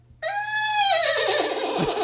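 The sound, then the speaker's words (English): A voice imitates a horse's whinny: one loud, sustained, high neigh lasting about two seconds, starting abruptly and breaking into a shaky, quavering flutter toward the end. “Do the horse thing.”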